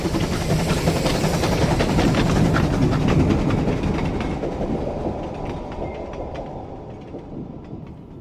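A troop train hurtles past on the rails at Kirkpatrick, a loud, dense rumble with rapid clattering wheel clicks that gradually fades as it moves away.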